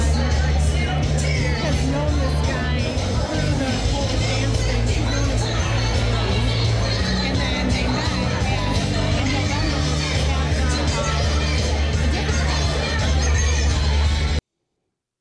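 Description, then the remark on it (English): The crowd at a presidential campaign rally roars steadily, a dense wash of overlapping voices, shouts and cheers with a deep low rumble underneath, staying loud and unbroken for about fourteen seconds before cutting off abruptly. “That's the crowd. I want to repeat to you guys, this is the crowd for a presidential campaign.”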